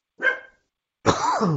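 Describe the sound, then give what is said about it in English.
Two loud dog barks with a short pause between them, the second longer and more drawn out, almost a yelping howl. “Sorry, dog's Your going dog crazy. Has opinions.”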